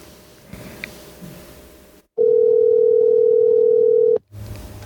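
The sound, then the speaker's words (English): A phone line rings out: one loud, steady electronic tone lasting about two seconds, set against faint room noise, with no one answering and no talking. “Somebody pick up the phone.”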